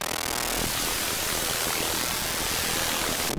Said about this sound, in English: So just like adding white noise, basically.